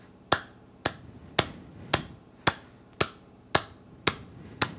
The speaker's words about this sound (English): And so I'm a former drummer, so I'll clap out how fast my thoughts are. Here's how fast I go.